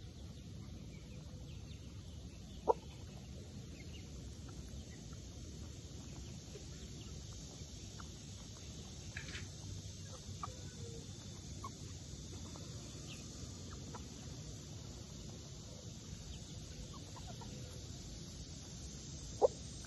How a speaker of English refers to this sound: I have to say, just hanging out with the birds, feeding them little breadcrumbs is the most relaxing thing. And Sergeant Buttercup is so handsome.